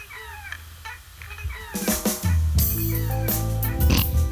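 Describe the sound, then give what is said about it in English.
Whiny baby vocal cries with rising and falling pitch, at first nearly alone, then a loud, dense music track crashes in and carries on beneath the baby's wailing. “It's not the guitar. It sounds it's a kind baby.”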